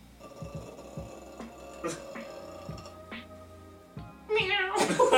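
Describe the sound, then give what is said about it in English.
A man imitates a cat's meow to startle someone showering in the dark, with drawn-out wavering cries over a low background hum, then ends in a louder, harsh, strained burst near the end. “meow sound, and I'd be like,”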